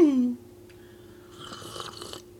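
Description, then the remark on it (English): A brief voiced sound opens, then after a pause comes an airy, wet slurp lasting under a second as someone sips sherry, with a faint hum underneath. “The next thing we're going to do is I'm going to take a sip of sherry.”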